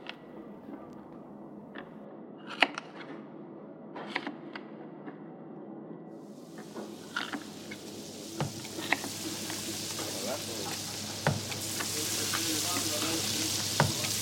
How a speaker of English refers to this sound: Shad begins frying the first batch of falafel